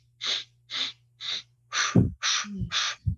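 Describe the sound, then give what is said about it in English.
A series of sharp, forceful breaths repeated in a steady rhythm, about seven loud bursts of air, with soft low thumps of tapping joining in toward the end: a breathing exercise done in syncopation with tapping. “And you would sort of like in syncopation, like you would do it and you would do the breathing exercises with the tapping, like.”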